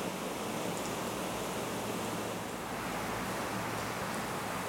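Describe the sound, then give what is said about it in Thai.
Steady, dense hiss of rain falling, continuous and even for the whole stretch, with no voices, just a broad wash of water noise at moderate level; the rain has been falling for almost an hour and a half during an evening Dharma talk. “นี่ฝนตกมาเกือบชั่วโมงครึ่งแล้วนะ”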